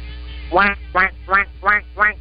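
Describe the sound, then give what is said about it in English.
A person imitates a duck, giving five evenly spaced nasal quacks in a steady rhythm, fairly loud against a quiet background hum. “Quack, quack, quack, quack, quack.”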